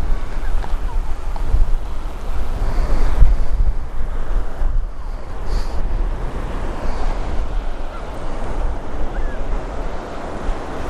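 Waves wash continuously onto the shore of Talisker Bay, Scotland, a steady broad rushing roar that swells and eases, with gusty wind buffeting the microphone throughout and no clear voices.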